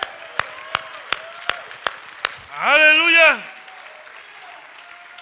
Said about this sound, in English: Oh, praise the Lord. Come on and give Jesus a clap off this morning, amen?